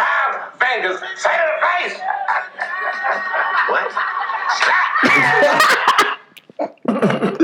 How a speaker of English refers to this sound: Yo, so I don't really know the backstory to why this nigga had to get bitch slapped.